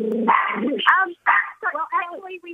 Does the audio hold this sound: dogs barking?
yes